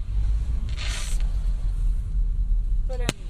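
Fireworks go off right next to a car on its left, over the car's steady low engine rumble on a road where people stand at the side watching: a brief hissing, crackling burst early on, then one sharp, sudden bang near the end.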